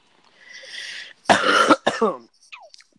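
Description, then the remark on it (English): A breathy intake of air, then two harsh, rasping coughs in quick succession, loud, with a faint throaty trailing sound at the end. “I coughed.”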